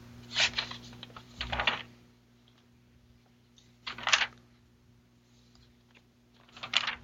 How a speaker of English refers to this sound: We can hear him turning pages. Turning the parchment pages.